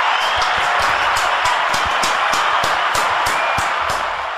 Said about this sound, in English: And I just wanted to say thank you, guys. Give them a fucking round of applause.